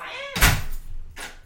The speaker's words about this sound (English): Can you close the door, please? Thank you.